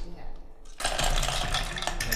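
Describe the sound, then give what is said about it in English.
Metal dice clatter down a dice tower, a sudden loud burst of rapid rattling and tumbling that starts abruptly and continues busily for over a second, over faint low background murmur. “And this has got to go down the tower.”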